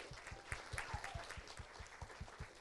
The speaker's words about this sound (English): Let's have a big round of applause for our panel tonight.